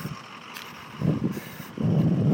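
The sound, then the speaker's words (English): Low engine rumble from a large UPS delivery truck, swelling in two surges as it drives past, growing louder toward the end. No one speaks. “Oh, there's a huge UPS truck in my house.”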